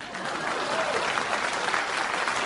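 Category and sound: crowd, audience applause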